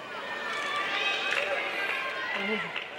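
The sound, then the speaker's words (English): A subdued tennis crowd reaction after Serena Williams hits an ace that Lindsay Davenport can't reach: a steady, muffled murmur of many indistinct voices with no loud burst of cheering, holding an even level throughout. “Notice the crowd's response is far more muted.”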